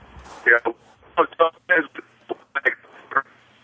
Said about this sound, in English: I couldn't understand a word you were saying. Your phone was breaking up.